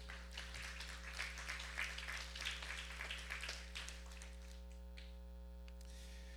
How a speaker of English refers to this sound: Clap your hands and tell the Lord, thank you.